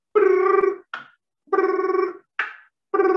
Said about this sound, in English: On the 17th ring, she finally answered the phone and had the audacity to still have the CPAP mask on when she did it.